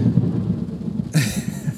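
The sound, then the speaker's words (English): A low, steady rumble suddenly breaks into a sharp, loud crack of thunder from a big lightning strike right in front of the listener, filling the air with a bright, crackling roar. The strike lands close and drowns out the background. “That was a big lightning strike right in front of me.”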